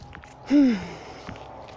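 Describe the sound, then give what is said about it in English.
A person walking up a small hill lets out a single heavy, breathy exhale, almost a sigh, which rises out of a quiet outdoor background, with faint soft steps before and after. “And I apologize if I sound like a choo-choo train breathing heavily, but I'm kind of walking up a little hill.”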